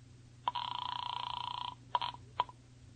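An old-fashioned telephone bell rings loudly, one long trilling ring followed by two short bursts, with a low hum underneath and no one speaking.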